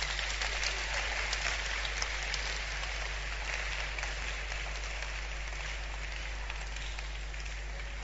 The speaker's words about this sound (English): Clap for Jesus.